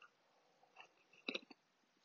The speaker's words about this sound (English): I'm going to take a quick sip of my coffee because y'all seem to enjoy that, and I enjoy my coffee.